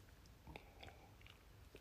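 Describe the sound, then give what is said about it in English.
Someone takes a quiet sip of coffee, with a few soft slurping and swallowing mouth sounds spread over a couple of seconds and no talking. “I'm just going to have a sip of my coffee, excuse me.”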